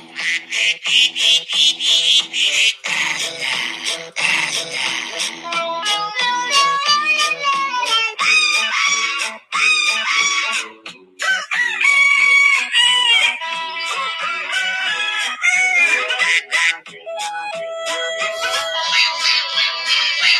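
Rooster crows, clucks and other animal cries, pitch-shifted and spliced into a bouncy, continuous melody, loud and busy throughout with quick rhythmic cuts and no talking.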